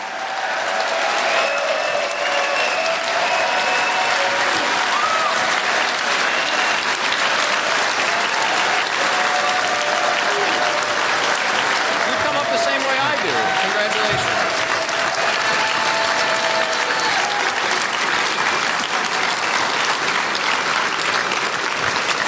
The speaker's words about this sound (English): Everyone, please stand and give a round of applause for the nominee for President of the United States, Governor Gary Johnson.